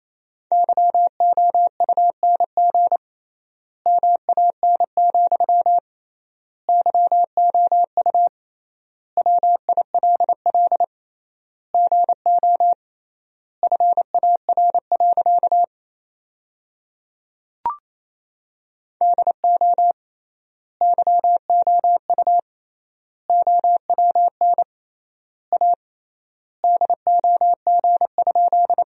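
Fast Morse code at about 28 words per minute with three-times word spacing, sending sentences built from the top 400 words: a single steady mid-pitched tone keyed into rapid dots and dashes, in clusters separated by longer pauses between words, with no voices.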